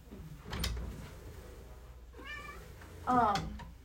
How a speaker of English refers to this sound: And I'm going to let my cat in real quick. One second.